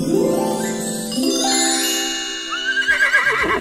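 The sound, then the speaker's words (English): A child's pony in Norway gives a single long, loud whinny, its pitch climbing and then breaking into a shaky, quavering trill at the end, with no talking. “Hi, I'm Emmeline, and this is my pony”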